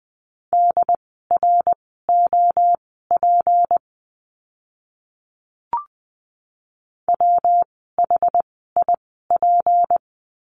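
Morse code beeps at 20 words per minute on a steady mid-pitched tone, keyed in quick dots and dashes to spell out practice words, with two bursts split by a pause and a single faint click. No voices.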